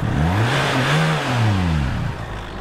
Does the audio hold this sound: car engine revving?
yes